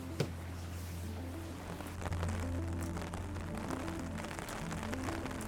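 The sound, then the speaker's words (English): Artificial rain falls steadily inside the enclosed Biosphere 2 rainforest, a 35,000-cubic-meter space with over 100 plant species, a dense continuous patter of drops over a constant low mechanical hum, with no voices. “It has over 100 plant species, and we can control every variable, from temperature to carbon dioxide to even the rain that's starting to come down right now.”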